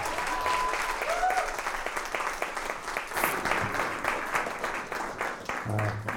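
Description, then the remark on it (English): An audience at a church in Chicago breaks into a round of applause to welcome a guest pastor, steady dense clapping that runs the whole way through with a few whoops and voices rising over it. “So could you give, with the greatest warmth in your heart, a round of applause for Pastor Corey Bendix?”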